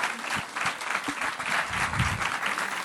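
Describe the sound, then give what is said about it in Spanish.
Steady applause from an audience for the actors, a dense wash of many hands clapping at an even level throughout, with no voices standing out. “¿Por qué no le dan un aplauso a los actores, por favor?”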